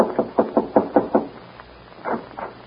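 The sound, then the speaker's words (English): Knocking on the wooden door of a lamp-lighted ranch house at night: a quick run of six firm raps, a short pause, then two softer knocks, clear with no voices. “Al, who is always elected to do the dirty work, is voted to knock on the door and make the necessary speech.”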